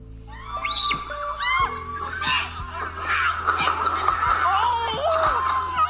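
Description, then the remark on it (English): Several people groan and yelp in overlapping, wavering voices, punctuated by repeated dull thumps at irregular intervals as they bounce down the Michigan slide. The commotion stays steady and fairly loud throughout. “Like, you could hear people brucking their shit, dog.”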